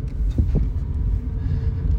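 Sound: car driving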